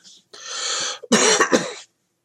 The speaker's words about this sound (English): And he's coughing in the acrid smoke. Kind of like I am, because I've been talking for 2 hours.